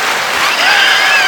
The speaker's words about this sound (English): See if we can get a round of applause for that.